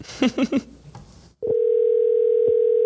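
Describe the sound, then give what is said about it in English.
Three quick electronic beeps, then a steady, loud telephone tone drones on without a break as an outgoing phone call to a caller connects and rings out on the line. “If it rings three times, I'm keeping it ringing.”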